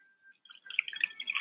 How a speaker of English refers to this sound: pours milk right into the box.